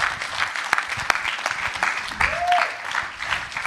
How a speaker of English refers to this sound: Come on, give him a round of applause. That was an amazing message.